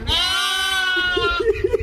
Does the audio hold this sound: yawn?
no